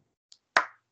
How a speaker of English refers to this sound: I'm clapping.